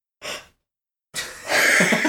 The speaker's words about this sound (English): Sorry, I just yawned.